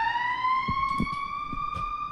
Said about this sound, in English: In Wyoming? Like, there's no cars on the road. You're going to use a siren?